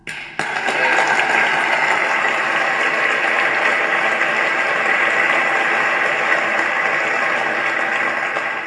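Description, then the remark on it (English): An audience breaks into loud applause, a dense, steady wash of many hands clapping that begins abruptly and carries on without fading for about eight seconds, with no voices over it. “That right there in real time is what it's all about, because if that's the thing that's gonna get the loudest clap so far from this conversation, that's what we need to be focusing on.”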